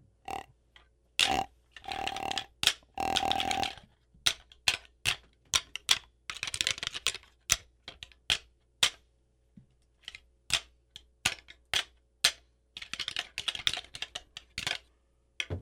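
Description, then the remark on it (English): Deer antlers rattled together in a rapid series of sharp, clacking knocks and scraping grinds, irregular and percussive, fairly loud, with brief pauses between bursts and no talking. “But when I'm rattling, I'll do this for about 30 seconds.”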